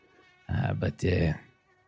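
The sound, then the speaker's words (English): Insects buzz in the woods in two short bursts, a droning whine that rises, briefly dips, then returns before fading into quiet. There is no talking. “You're talking, you do hear a bit of buzzing coming from the woods as well.”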